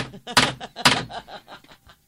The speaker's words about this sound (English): No, it's like a block of wood. It sounds like someone's knocking a block of wood because it is someone knocking on a block of wood.